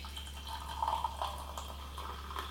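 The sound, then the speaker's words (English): Faint brewed Catura coffee pouring into a cup, a soft steady trickle with brief gurgling notes near the middle, heard over a low electrical hum with no one talking. “This is the Catura that we're going to be trying now, that I need to pour.”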